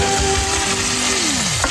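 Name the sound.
food frying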